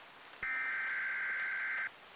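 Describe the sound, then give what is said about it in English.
A weather radio emergency alert for a tornado warning, at around 2 a.m. during intense rain, sounds one loud, steady, harsh buzzing tone for about a second and a half, then cuts off, over a faint hiss of background noise. “The same rattling buzz screech was playing again, this time on loop, meaning stuff was getting serious.”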